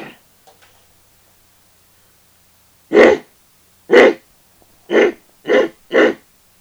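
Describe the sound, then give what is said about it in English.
A person imitates a gorilla-like noise heard on a trail, with five short, gruff, breathy vocal bursts, two spaced apart, then three in quicker succession, loud against otherwise near-silent surroundings. “That's about as close as I can get to it. That's what it sounded like. Almost like a gorilla.”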